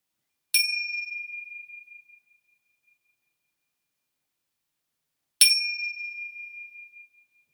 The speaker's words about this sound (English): I'm going to let you hear my sounding bell. I use these chimes often in my own private meditation. I use this bell, these chimes, when I'm with a group. Often I end a yoga class with these bells. But this is what it sounds like.